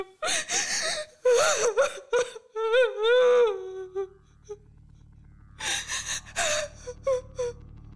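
A woman, a queen and mother, sobs and wails in gasping, quavering bursts, her high voice rising and falling in long moaning cries, then breaks into a few more choked sobs after a short pause.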